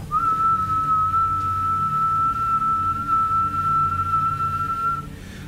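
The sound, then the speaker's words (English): A person whistles one long, steady note that holds the same fairly high pitch for about five seconds before stopping, over a low background rumble, imitating the whistling of 'whistlers' in the woods. “why else name them whistlers if they weren't making noises like whistling?”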